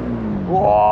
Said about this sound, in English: Whoa! Is that a jet ski coming this way?